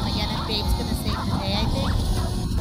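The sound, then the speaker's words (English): Several wolves in a film whine and yelp in overlapping, rising and falling cries, steady and fairly loud over a dense, noisy background with what may be muffled voices mixed in. “Called all dogs wolves.”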